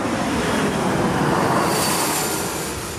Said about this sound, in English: Sorry, it's another airplane. We got to look.